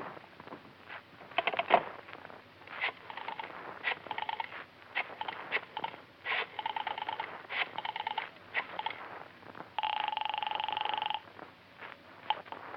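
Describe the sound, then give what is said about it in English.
Rapid bursts of ratcheting clicks from a telephone being dialed, repeated in several runs, with a steady buzzing tone partway through; muffled and thin, with no voices. “Can I use your phone? Yeah, help yourself.”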